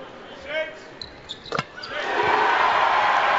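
A few squeaky tones and a sharp thump give way to a crowd cheering at the Marriott Center during a BYU basketball game as BYU reaches 80 points on Elijah Bryant's free throws. After two seconds it swells into a loud, sustained roar that continues to the end.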